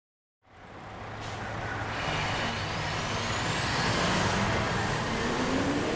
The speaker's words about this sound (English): Another truck drives into the Butler County landfill on a cold and sunny Monday morning. That's one of the many dozen trucks that will go through the landfill, as it helps complete the daily consumption of 800 to 1,000 tons of trash